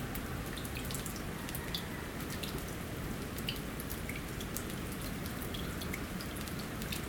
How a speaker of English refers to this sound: You can hear the water melting. All the ice is dripping now.